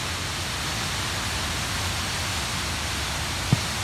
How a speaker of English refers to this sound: Yeah, can you hear that sound of this crashing water?